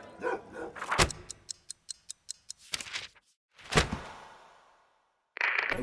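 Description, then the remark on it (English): Dogs bark at reindeer: a few loud, sharp barks come in separate bursts, with a quick run of light tapping between them and a brief hiss of noise near the end. “I'm sorry, my dogs are barking at the reindeer.”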